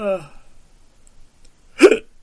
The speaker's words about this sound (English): Hey, goddamn hiccups! Goddamn hiccups! Dude, yawning and hiccuping at the same time.